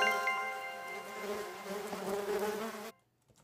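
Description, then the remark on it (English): A dense, steady buzzing hum of bees in nearby trees, continuous for about three seconds before cutting off abruptly into near silence. No one speaks. “B, the sound of bees humming in nearby trees? Or C, the sound of a broken radio? If you said B, you're right about bees.”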